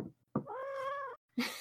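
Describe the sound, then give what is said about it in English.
A cat rolling onto its back bumps into the microphone, making two loud, muffled thumps with a drawn-out meow sounding between them. No one speaks. “Also knocking into the microphone.”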